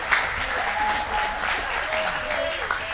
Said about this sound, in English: But I need you to give yourself a round of applause. Give yourself a round of applause for being out here.